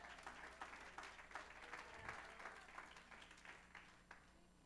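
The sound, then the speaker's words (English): An audience claps hands together to give God the glory, in sustained, dense applause with many overlapping claps at a steady, moderately loud level and no one speaking. “Come on, let's clap our hands and give God the glory all over this house.”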